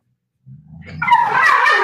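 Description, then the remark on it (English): A dog named Django gives a low, rumbling growl that rises into a louder, strained whining grumble of protest as another dog, Rude, takes his toy; continuous, with no one talking. “Rude decides he wants to take Django's toy. And Django doesn't appreciate that.”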